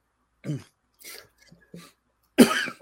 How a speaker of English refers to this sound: Sorry. You all right? Okay, I think I'm good. I should have brought some water. Stop coughing.